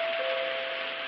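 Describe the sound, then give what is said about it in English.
A doorbell rings with one loud, sustained buzz, a steady single tone over a harsh, raspy hum that holds unbroken for about a second, with no voices. “Gee, what a ring.”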